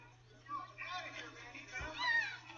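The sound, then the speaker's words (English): A kitten named Tiger mews a few times in short, high-pitched cries, the last one rising and louder, over a steady low hum in the background. “Hey, what's the cat's name, Junior? Tiger.”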